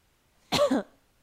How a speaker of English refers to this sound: If you want him to look at the camera, when you just cough. Cough? Yeah.